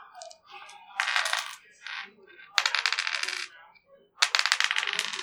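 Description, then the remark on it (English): Six-sided dice clatter across a hard tabletop during a tabletop game in three separate rolls, each a quick burst of bright rattling clicks that tumble and settle. No one speaks. “Oh, I said roll 2D6. Oh, D6. Yeah. Bring another dice into the game.”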